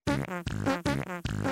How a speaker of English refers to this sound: And with that, of course, we got the fart song.